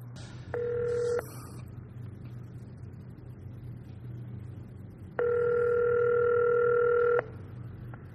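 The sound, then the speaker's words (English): A telephone call to Gallery 63, trying to reach Paul Brown of Auction Kings, ringing through the line: a short burst of ring tone, a pause, then a longer two-second ring, all over a steady low rumble with no talking. “I'm going to try to reach him on the phone right now.”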